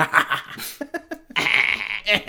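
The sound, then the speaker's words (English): A person's voice imitates a goat-like bleating laugh, with a few choppy, nasal pulses followed by a longer strained bleat, moderately loud with no other sounds. “… goat laugh. Can't do it.”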